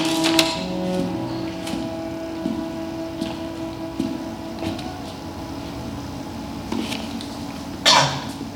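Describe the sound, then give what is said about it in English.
Scattered typewriter key strikes clack at an uneven, unhurried pace over a steady low hum, with a louder, fuller burst of mechanical noise near the end. No one speaks. “Sometimes a simple rhythm of typing gets us from page one to page two.”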